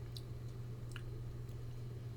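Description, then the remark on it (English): Soft sipping of cold Hawaiian water from a Waikiki water bottle: a few small wet slurps and lip clicks spaced across a couple of seconds over a steady low hum, with no talking. “Oh, you took a sip too.”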